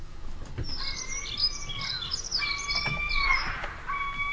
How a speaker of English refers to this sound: Birds are chirping in my ear.